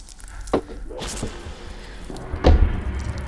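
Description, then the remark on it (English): A fist smacks into slime in a few wet, squishy thuds, spaced irregularly, with the last impact the heaviest and loudest over a low background rumble. “You hear the sound of her fist hitting that slime?”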